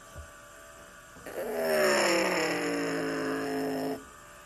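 A loud, steady roar of stock car engines from the mobile racing game NASCAR Heat Mobile, during a race at Talladega, swells in for about three seconds, the engine pitch droning and shifting slightly before cutting off abruptly.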